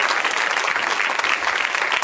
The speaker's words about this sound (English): Somebody should clap their hands and say amen, would you?